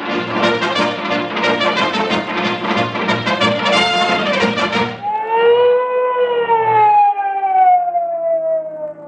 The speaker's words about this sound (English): What's the idea of sounding the siren, Officer Mahoney?